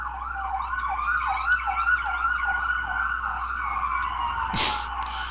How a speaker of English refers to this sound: Is that a game, or is that actually happening? There are cop cars going by.